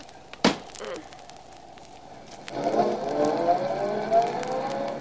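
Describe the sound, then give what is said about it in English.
A sharp thud like a car door closing, then after a pause an engine starts and idles up into a steady, revving drone as the car is driven slowly into a garage. “I'll just put the car in the garage.”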